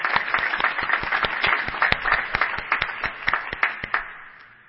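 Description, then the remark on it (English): An audience breaks into sustained applause for an absent man, many hands clapping together in a dense wash with sharper individual claps standing out, holding steady for several seconds before starting to thin out. “Let's just give him a little applause.”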